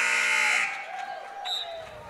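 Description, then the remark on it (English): A loud, harsh gym buzzer signalling a shot clock violation in a basketball game blares for about half a second, then cuts off, leaving the murmur and shouts of a crowd in a large echoing gym. “And we get a shot clock violation on the Sturgis end.”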